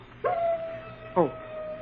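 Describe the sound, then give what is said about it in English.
A wolf howls in one long, steady, drawn-out note, joined midway by a second short, wavering cry, heard at moderate volume against a faint background hum; the wolf stands outlined against the sky on a rise. “Oh, listen, darn wolf.”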